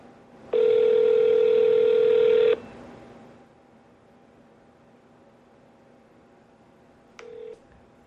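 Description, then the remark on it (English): A phone ringing through the receiver while calling a 31 Flavors ice cream shop with area code 657 and waiting for an answer: one steady two-second ring tone, a long pause, then the start of the next ring. No one speaks. “Maybe it's 31 rings before they answer the phone.”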